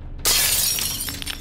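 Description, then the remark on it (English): Window glass shatters with a sudden loud crash, then bright tinkling shards keep falling and scattering for over a second, with no voices. “the groans and snarls of some of these frenzied just flailing through the window from the fire escape, crawling in”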